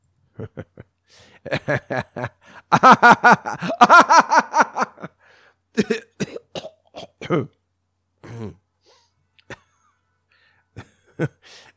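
A loud coughing fit: irregular bursts of harsh coughs mixed with wheezy, voiced laughter, with a few short pauses before the last scattered coughs trail off.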